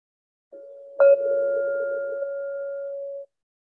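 A single meditation bell, the first of three bells marking a 60-minute awareness meditation session, rings out alone: a soft hum rises, then one clear strike brings a bright, steady mid-pitched tone that sustains evenly for a couple of seconds before stopping.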